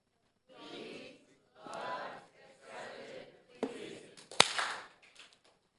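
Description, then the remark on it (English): An audience applauds in several short swelling bursts, with scattered cheering voices mixed in, and a few sharp, loud claps stand out near the end before it fades. “That is something to clap about. Yes, even more than once.”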